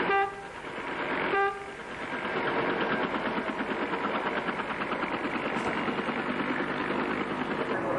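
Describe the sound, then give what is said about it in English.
The rotor blades of an American-made Bellagasta UN helicopter in Lebanon turn with a steady, rapid chopping pulse over a loud engine roar, preceded by two brief horn-like tonal blasts at the start. “You hear the rotor blades turning the helicopter.”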